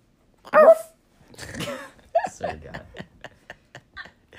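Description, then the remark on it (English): A dog gives one loud bark, followed by a burst of noisy sound and then a run of short, rhythmic chuckling laughs. “Did you introduce your dog?”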